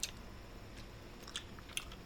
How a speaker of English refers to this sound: Okay, we're chewing on them.